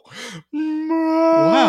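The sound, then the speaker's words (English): A person imitates a whale's call with a long, low, sliding moan, a short wavering groan first, then a sustained drawn-out tone that rises and swoops near the end, fairly loud. “I think the whale's trying to talk to us.”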